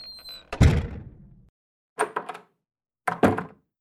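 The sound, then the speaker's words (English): Doors shut with heavy thuds, three in all: a loud first slam with a lingering rumble, then two shorter, sharper closes spaced about a second apart. No voices are heard. “And Michael and Jack kind of also follow behind you guys, and those doors shut.”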